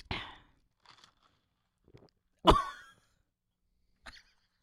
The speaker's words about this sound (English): Hold on. You just hear. Oh yeah, will it pick up the swallowing?